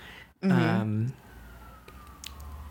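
A loud, brief blast from an emergency vehicle siren rings out outside, then a fainter siren tone keeps wailing and slowly falls in pitch as it fades away.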